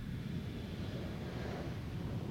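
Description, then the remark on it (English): A passenger plane, seen earlier being loaded and with no markings on its tail, gives a steady, low engine rumble that fills the whole stretch, a continuous droning roar with some faint higher hiss and no voices. “That's a passenger plane.”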